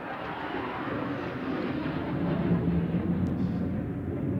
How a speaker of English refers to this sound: Sorry, that was really loud. We just had a jet fly over really low.